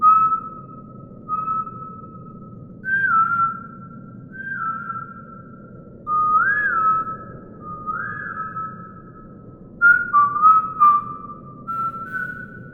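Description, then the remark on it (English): A girl quietly whistles to herself at the mouth of a tunnel: soft, tuneful whistling in a series of short phrases that slide up and down in pitch, echoing in the tunnel over a steady low rumble, with no one talking. “She's quietly whistling to herself as we get to the mouth of the tunnel.”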